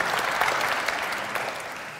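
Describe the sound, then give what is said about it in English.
Steady audience applause for the actors after a drama performance, a dense rush of many hands clapping at once, sustained and fairly loud throughout with no voices standing out. “A round of applause for our actors this morning.”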